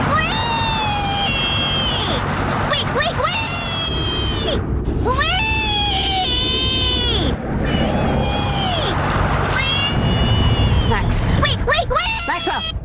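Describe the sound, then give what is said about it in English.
A little pig crying "wee, wee, wee" in a long run of loud, high-pitched squeals, repeated in quick bursts with brief pauses, over a steady background rumble, in a Geico car insurance commercial. “Did the little piggy cry wee, wee, wee all the way home?”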